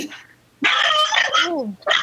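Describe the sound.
A person imitates a chicken by ventriloquism with a burst of loud, strained clucking, choppy bursts with squeaky, falling pitch, ending in one short squawk after a brief pause.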